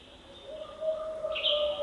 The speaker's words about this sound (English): An owl joins a chorus of other birds at Big Beaver Valley in the northern end of the park. The North Cascades is one of the least visited of the U.S. national parks.